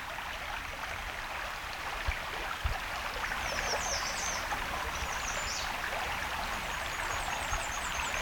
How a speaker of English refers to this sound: Sounds like we got black and white warbler here.